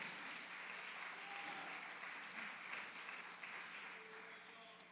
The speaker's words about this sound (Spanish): Denle fuerte aplauso a mi Señor con todo el corazón.